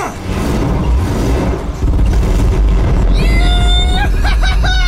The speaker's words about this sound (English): Check out that explosion!